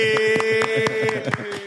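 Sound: hand clapping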